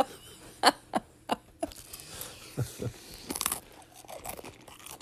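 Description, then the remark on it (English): Wet crunching and smacking of someone chewing with their mouth open, a series of sharp crisp bites at first, then softer irregular mastication noises continuing throughout. “Chewing with your mouth open just aggravates me.”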